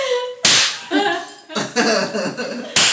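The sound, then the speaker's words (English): Two sharp slaps of someone's backside striking against a hand, about two seconds apart, with softer rustling and shuffling sounds in between and no talking. “That's just his ass slapping on my hand.”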